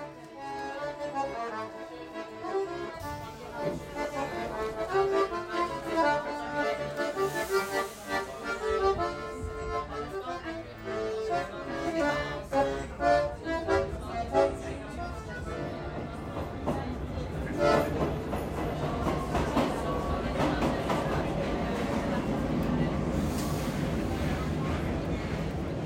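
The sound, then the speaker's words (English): A train passes: sustained horn-like tones sound over a steady rumble, then the rolling noise of the cars swells louder and rougher toward the end. “So what you just heard was the sound of a train.”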